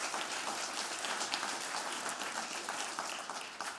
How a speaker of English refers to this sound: Yeah, you can clap for that, absolutely.